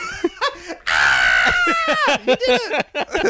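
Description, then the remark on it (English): A voice imitates the startled scream of the lady from the film Hook who sees the family arrive in London for the first time: a sudden, sustained high-pitched shriek with a wavering tone, followed by choppy bursts of laughter and short vocal yelps. “That's my scream of the lady from Hook that sees the family arrive for the first time in London.”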